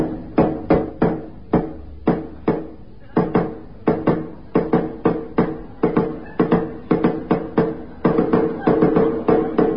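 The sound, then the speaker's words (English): Sharp knocks on a wooden door repeat steadily, sometimes in quick doubles or triples, loud, with short pauses between bursts and no voices. “as instructed, I knocked 6,000 times.”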